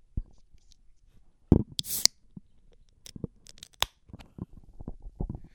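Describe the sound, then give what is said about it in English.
A Busch Light beer: a sharp crack and a brief bright hiss, then a scatter of small, irregular pops and crackles as the beer bubbles fizz, fairly quiet, with no talking. “You hear the bubbles going on that man.”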